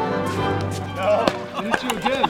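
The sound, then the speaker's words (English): Several sharp, hollow pops of pickleball paddles hitting a ball land at irregular intervals over a steady background of voices and shouting, during pickleball play in America. “It is the sound of pickleball, which has, in the blink of an eye, become America's fastest growing sport.”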